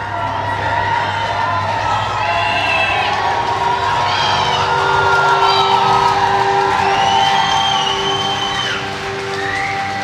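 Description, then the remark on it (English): Thousands of fans of a band cheer loudly and continuously outside the stage door as it opens, with high whoops and shouts rising above a dense, steady roar of many voices for the full ten seconds. “Outside were their fans, thousands of them.”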